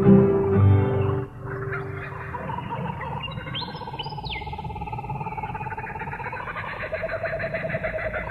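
A kookaburra's raucous laughing call at sunrise rolls on and on, a rhythmic cackling chorus with sharp whooping notes rising above it, loud, after a brief low hoot at the start.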